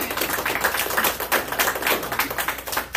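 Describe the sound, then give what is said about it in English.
A church audience claps steadily as a hand clap of praise to the Lord, many hands overlapping into a dense, crackling patter of sharp smacks that stays even and loud throughout, with no voices standing out. “Let's get a Lord a hand clap of praise.”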